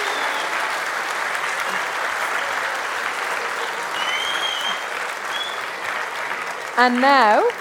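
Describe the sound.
A steady, loud round of applause from an audience, dense clapping that holds evenly for several seconds, with a voice briefly speaking over it near the end.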